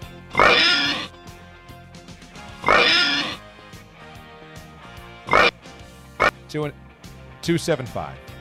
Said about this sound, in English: give me the oinks.